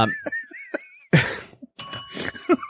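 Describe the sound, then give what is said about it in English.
A small bell used as a segment marker rings out loud, struck in a couple of quick bursts with a bright, lingering metallic tone between them, and no one talks over it. “If you can't tell, we just recently added the bell.”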